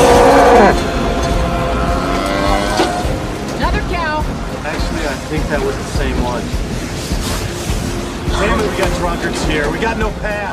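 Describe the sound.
A cow moos as it flies by in a tornado storm in a film scene with effects by Industrial Light and Magic, through loud, roaring wind that fills the whole scene, with shouting voices and rushing debris noise mixed in.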